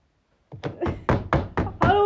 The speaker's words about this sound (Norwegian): Hvem er det? Vent litt. Hvem er det som banker på?